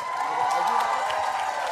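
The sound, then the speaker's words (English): An audience claps steadily throughout, a dense, even wash of applause with some faint cheering and murmured voices mixed in underneath. “Give it up for Miss the clapping shirts.”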